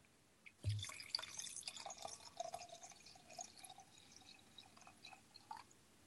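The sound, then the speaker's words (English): A refill drink is poured into a glass: a sudden splash, then a steady trickling gurgle with faint ringing tones that carries on for about five seconds, with no talking. “Did you have to clear your throat to fill a glass?”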